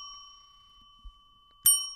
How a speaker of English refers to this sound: Two bells.